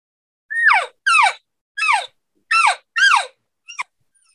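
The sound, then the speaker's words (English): A cow elk chatter call: five quick, high, whiny mews that each slide downward in pitch, evenly spaced, followed by a short clipped chirp. No one speaks. “I'm letting him know I'm coming to him. And you'll hear her do this.”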